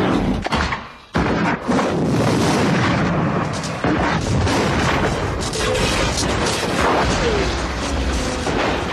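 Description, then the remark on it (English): Heavy fire from a Cobra assault cannon booms out loud, followed by a roaring explosion. The blasts pause for a brief instant before merging into a dense, sustained rumble of gunfire and debris. “had the sense to bring the Cobra assault cannon with him.”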